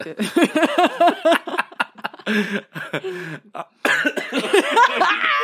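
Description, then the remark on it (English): A loud coughing fit: a rapid series of harsh, voiced coughs in several bursts with brief gasping pauses between them, lasting several seconds and mixed with strained vocal sounds. “My bad, y'all, I'm sorry, listening, coughing my ear.”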